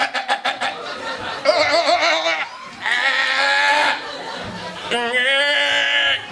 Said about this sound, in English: I always feel like Icelandic sheep sound like they're humans that have been turned into a sheep by a bad witch. They're like stuck inside a sheep body trying to communicate.